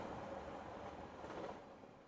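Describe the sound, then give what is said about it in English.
A fast train rumbles steadily along the rails, a dense, continuous roar with a faint rattle underneath, fairly loud throughout with no one speaking. “Well, they don't call it a fast train for nothing.”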